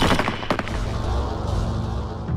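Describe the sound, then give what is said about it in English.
A sharp volley from the eight rifles of a firing squad, several shots cracking out almost together, followed by a heavy rumbling echo that lingers and slowly fades. No voices. “The deafening explosion of the eight rifles was the last thing Ahmed heard.”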